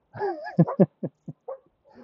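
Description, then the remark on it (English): A dog lets out a drawn, whining yelp followed by a quick series of four or five sharp barks at a person walking past, clear, with no one talking over them. “I'm at that spot where those dogs love to bark at me again.”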